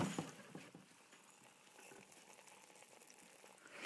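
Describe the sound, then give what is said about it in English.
Liquid boiling steadily in a pot as its cover is unlocked and raised, a dense bubbling and crackling hiss with scattered pops, fairly quiet and continuous throughout with no voices. “Oh, listen to that, to it boil.”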